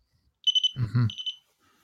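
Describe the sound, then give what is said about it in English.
A kitchen timer set for pizza rolls beeps in quick, high-pitched electronic bursts, three sharp beeps, a pause while a person briefly speaks, then another short run of beeps, clear. “Somebody set a timer for pizza rolls.”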